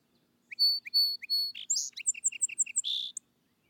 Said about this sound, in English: But to return, the song sparrow, that universal favorite and firstling of spring, comes before April, and its simple strain gladdens all hearts.